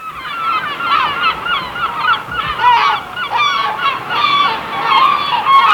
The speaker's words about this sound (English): We've even had summer seagulls and summer beach sea sounds as well. And did you enjoy that when we had that? If you missed it, if you missed the seagulls and stuff, we can do it again for you, not a problem.